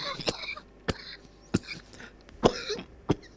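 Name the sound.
cough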